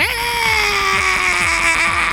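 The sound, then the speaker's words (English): A voice imitates the screech of a giant big mama bug: one loud, sustained, shrill wail lasting about two seconds, with its pitch sagging slightly and a raspy, pulsing edge underneath. “You see the big mama bug screech.”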